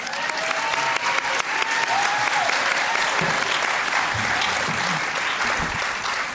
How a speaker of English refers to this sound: I think it would be nice to clap our panel.